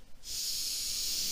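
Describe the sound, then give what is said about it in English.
A single long, steady sniff drawn in through the nose, airy and hissy, fairly loud, lasting about a second with no talking. “The sniff.”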